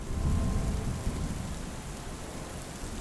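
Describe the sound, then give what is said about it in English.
A thunderstorm with heavy rain pouring steadily while deep thunder rumbles low and loud, strongest at the start and rolling on throughout, with no voices. “Thunder is crashing, a lightning flash has revealed this gigantic piratical vessel very, very close to the shore.”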